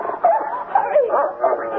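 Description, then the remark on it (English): A dog barks and yips excitedly in a rapid, uneven series of sharp, high-pitched calls, fairly loud, with no talking. “Let the dog out.”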